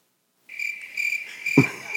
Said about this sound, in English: See? I brought that. Got the crickets on. Yeah, got the crickets.